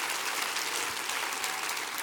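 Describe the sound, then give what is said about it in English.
An audience claps their hands together in a dense, steady wash of applause that holds at an even, moderately loud level throughout, with no clear voices above it. “Clap your hands all over this house.”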